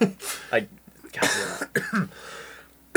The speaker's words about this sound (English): So that's what you can expect is a lot of coughing.